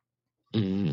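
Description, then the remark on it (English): After half a second of silence, a single loud, sustained fart sound effect blares from an Alexa smart speaker, a buzzy, tonal rasp holding steady for about half a second, played through a small speaker. “Hey, Alexa, fart.”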